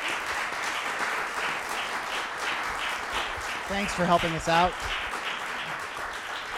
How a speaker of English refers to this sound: Before you leave, and before we wrap up, first, can we give one more round of applause to our friend